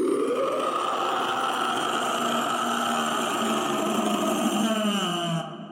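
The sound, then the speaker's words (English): A voice imitates a lich's soul screaming as it evaporates into nothingness: one long, loud, raspy wail held for about five seconds, its pitch sliding up at the start and sagging lower before it cuts off. “And you hear what you can only assume is this lich's soul screaming out as it's evaporated into nothingness.”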